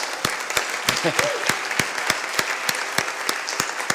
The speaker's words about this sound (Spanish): le damos un aplauso, porfa.